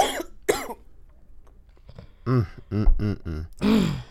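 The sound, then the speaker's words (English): Several harsh coughs in an uneven sequence: two sharp bursts, a pause, then a cluster of three or four throaty coughs and a final louder one, with no speech. “I got a cough.”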